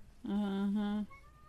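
A single drawn-out meow, close and fairly loud, holding a steady low pitch for about a second before cutting off, with nothing else but faint room noise around it.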